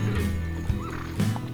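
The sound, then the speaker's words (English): A horse neighs over the steady clip-clop of hooves as riders stop their horses, with a couple of sharper hoof thumps standing out fairly loud; no one speaks. “you come to a few hundred yards, maybe 500 yards of this sort of cluster of trees, and the marshals stop their horses,”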